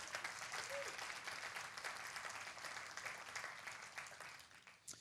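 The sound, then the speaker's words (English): A church audience claps steadily, many hands blending into a dense, hissing wash of applause that holds for several seconds before thinning out at the end. “Let's give Sim a round of applause, actually.”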